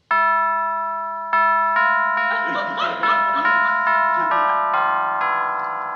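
doorbell ringing

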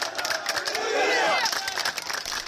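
protest crowd chanting

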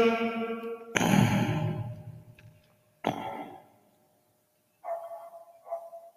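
dog barking

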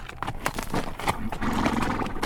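horse walking

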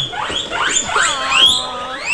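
guinea pig squeaking

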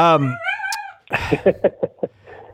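dog whining

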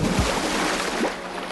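whale splashing into water

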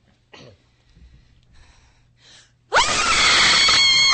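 person screaming loudly

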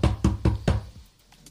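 knocking on a door

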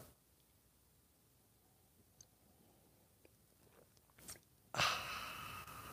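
sipping coffee

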